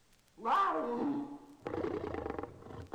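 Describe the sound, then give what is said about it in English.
A young Maasai lion cub practices roaring, letting out a strained, rising roar that slides downward, followed by a rougher, growly stretch of vocalizing, fairly loud with no talking. “Octavius, the Maasai lion cub, practices his meanest roars.”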